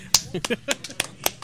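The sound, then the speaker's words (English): A handful of sparse, uneven hand claps, slow and half-hearted rather than a full round of applause, with faint voices murmuring underneath. “Yes, you begrudgingly clap.”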